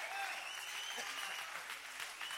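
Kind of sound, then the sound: crowd, audience clapping hands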